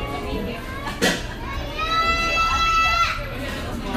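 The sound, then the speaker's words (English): A baby lets out a thin, high, wavering cry that sounds like a cat mewing. It rises and falls for about a second, with a short squeak before it and faint voices murmuring underneath. “Okay, so the baby behind me sounds like a cat.”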